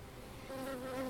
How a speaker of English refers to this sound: Well, bees are swarming at the moment. It kind of reminds me of my time rather too close to a hive full of them when I went to check out Hawthorne Farm in Haslingfield.